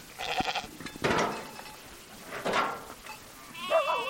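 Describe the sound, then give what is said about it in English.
Dozens of Angora goats and churro sheep crowded into a makeshift corral of pallets, plywood and fencing on Black Mesa bleat in overlapping, wavering calls, some loud, others softer, with brief pauses between cries and a final quavering bleat at the end. “dozens of Angora goats and churro sheep are crowded into a makeshift corral of pallets, plywood, and fencing.”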